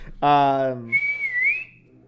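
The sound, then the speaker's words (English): A short voiced sound is followed by a single sustained human whistle, a steady high tone that dips slightly and rises again before fading, fairly loud. “I'm a really loud whistler.”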